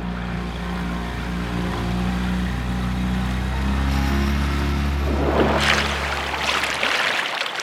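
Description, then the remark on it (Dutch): A boat engine drones with a steady low hum, then the throttle opens and a loud rush of churning water builds over the motor until the end. No one speaks. “Even een beetje gas geven dan.”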